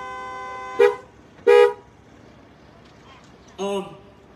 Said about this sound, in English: you guys okay? If you're okay, just give me a honk here. Make sure you're good, okay?